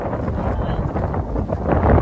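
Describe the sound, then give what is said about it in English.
Steady, rumbling wind buffets the microphone at night by rice paddies in the mountains in cool weather, a dense low roar with gusty swells that grows louder toward the end. “Windy.”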